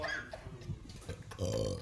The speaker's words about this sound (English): Can you guys burp on command? Yeah, absolutely.